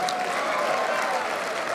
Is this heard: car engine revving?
no